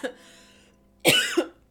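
A single fairly loud cough bursts out with a raspy second push at the end, following a brief softer throaty sound, with no talking around it.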